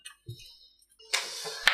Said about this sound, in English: I didn't ask for a dice roll.